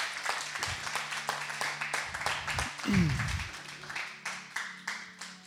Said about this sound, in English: I mean, 30 grand, that's pretty good for Speed the Light. Good job. clap at yourselves.